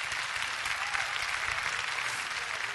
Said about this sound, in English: Oh, give the Lord a clap offering.